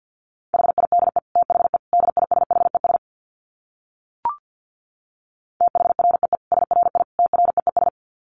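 Rapid Morse code at 50 wpm: a single steady mid-pitched tone keyed in fast dots and dashes, two bursts separated by a silent gap broken only by a brief click.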